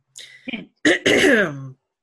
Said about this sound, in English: Anyway. Sorry. I coughed loudly into the microphone. That's okay. Her sound cut out, guys. It was fine. We don't know what she coughed, but her sound cut.